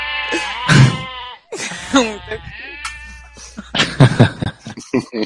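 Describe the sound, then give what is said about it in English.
A chorus of goats bleating loudly, several wavering, nasal cries overlapping in quick succession for a few seconds with no talking. “I wonder what those goats were laughing at.”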